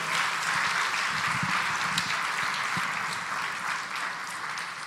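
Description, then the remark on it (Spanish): Steady applause from a church audience for a family, a dense wash of many hands clapping at an even loudness for several seconds, with no voices standing out. “Dar un aplauso a esta familia, por favor.”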